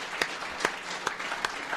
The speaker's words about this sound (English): Let's give a round of applause for employing 700 people in our economy.